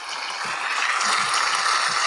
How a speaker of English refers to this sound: I may have clicked on a different applause sound effect there. It wasn't quite as good.